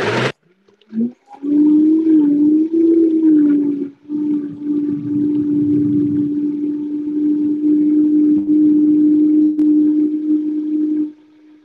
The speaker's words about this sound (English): And now we're going to put the lid on and blend this bad boy. You ready? All right, on.